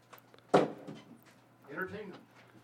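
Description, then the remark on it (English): A door shuts with one sharp, solid thud, followed by a second of softer rattling and latch noise, over a low steady hum. “is closing the door.”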